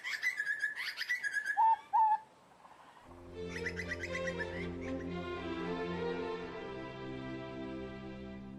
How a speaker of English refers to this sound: Certainly more than the desire to stop and bask in the glory of a single butcher bird, perhaps the most magical sound found on the whole Australian continent.